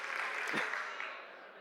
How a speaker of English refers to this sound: If you hear my voice, clap once. If you hear my voice, clap twice. If you like the movie The Grinch, clap three times.